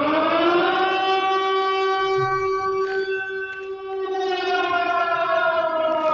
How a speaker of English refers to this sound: that is titled Silent Hill Siren on my soundboard